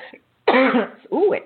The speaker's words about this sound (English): Let me just take a sip of some water. I apologize for coughing in your ear.